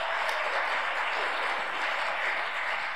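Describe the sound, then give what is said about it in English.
An audience claps together for a woman speaker in a steady, dense wash of applause, sustained at an even level for the whole stretch with no voices standing out. “So if we're going to clap, let's all do it. Give her a round of applause.”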